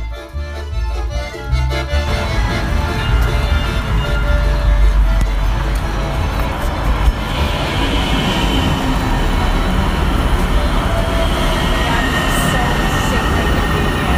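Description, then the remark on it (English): A train riding on rails, with Mount Baker as its next stop, heard as a loud, steady rumble and roar that continues throughout, with a brief higher-pitched rattle partway through. “Well, we got to get on this train.”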